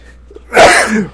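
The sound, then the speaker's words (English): A single loud sneeze bursts out after a brief quiet intake of breath, with a sharp explosive onset and a short trailing tail, heard on its own without talk. “Yeah, I'm about to sneeze.”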